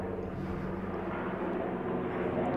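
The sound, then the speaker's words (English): A helicopter drones steadily overhead outdoors, its deep rumbling engine and rotor noise loud and continuous throughout, with no voices in between. “Motherfucker driving that helicopter's white. I gotta let this go by.”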